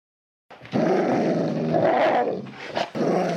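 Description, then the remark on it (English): A dog growls low and continuously for about three seconds, fairly loud, with a brief snarling rise near the end and a short break before it resumes; part of the opening of Crazy Dog Audio Theater's audio drama Demons of the Deep. “Don't listen to the dog. He's crazy.”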